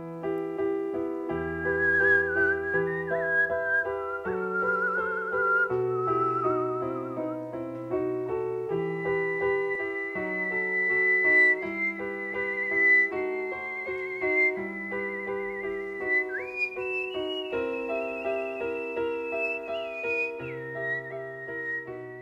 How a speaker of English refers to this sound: She's a musician, but she doesn't sing and she doesn't play an instrument. She whistles.